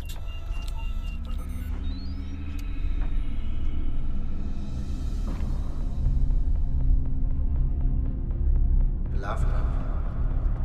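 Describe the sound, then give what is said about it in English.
A steady, deep engine rumble from a moving car as a man drives it fills the interior, continuous, with faint muffled voices and a brief sharper noise near the end. “the whole movie is him driving around in a car for an hour and 25 minutes.”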